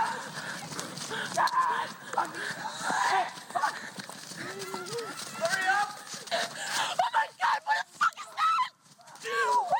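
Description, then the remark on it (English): Repeated nasal duck honks sound loud, bursting out in quick irregular bunches, with sharp clattering knocks crowding in toward the end. “No, get the duck ready.”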